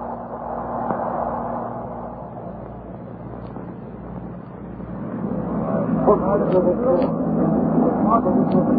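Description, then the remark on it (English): A small motor launch's engine drones steadily over the rush and slap of rough, angry water during a crossing as the wind grows stronger, the churning noise swelling louder in the second half and continuing throughout. “On the sound of it, that engine needs attention.”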